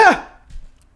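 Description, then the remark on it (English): A single sharp sneeze bursts out, loud and breathy with a quick falling vocal edge, then fades into near silence with only faint low rumble afterward. “Bless you.”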